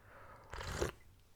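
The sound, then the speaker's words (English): A single short sip of mango and lychee green tea, a brief noisy slurp lasting about half a second against a quiet background, with no one talking. “Sipping on some mango and lychee right now.”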